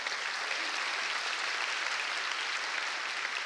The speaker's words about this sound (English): Ladies and gentlemen, give Jesus a big clap offering.